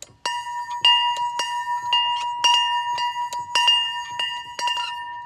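A small hand-cast bell rung about ten times in quick, slightly uneven strokes, each strike bright and clear with a sustained shimmering tone that overlaps the next. Close and fairly loud, no talking.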